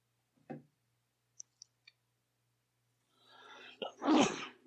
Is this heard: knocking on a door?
no